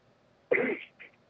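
A woman coughs: a single harsh cough bursts out suddenly, followed a moment later by a shorter, softer second cough, with quiet background before and between.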